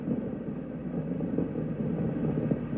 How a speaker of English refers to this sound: So I want to play just a short clip of the audio here, audio of the launch, and you can hear them talking about this, and then you can hear their final words.